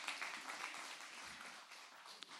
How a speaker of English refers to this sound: Okay, you guys can go back to your seats. Give him a clap for helping me out this morning.